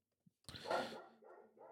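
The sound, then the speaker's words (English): A dog lets out one loud, harsh bark, followed by two shorter, softer barks in quick succession, with no talking over them. “I'm going to have to go beat my dog.”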